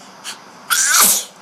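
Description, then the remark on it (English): A single loud sneeze: a faint quick intake of breath, then a sharp, hissy burst that fades out over about half a second. No one speaks. “Bless you.”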